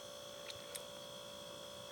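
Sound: refrigerator compressor humming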